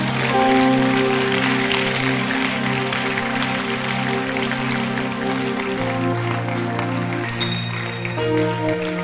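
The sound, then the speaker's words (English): A church audience claps for Jesus at the close of a service, a dense crackling applause spread across the whole clip, over loud sustained keyboard or organ chords that shift pitch partway through. “Clap for Jesus.”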